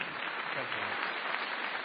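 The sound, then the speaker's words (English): An audience applauds steadily for Robert Rosenkranz at an Intelligence Squared U.S. debate at the Skirball Center for the Performing Arts, many hands clapping in a dense, even wash of sound that holds at a fairly constant loudness throughout. “I was going to ask for another round of applause for Robert Rosenkranz, and there it is.”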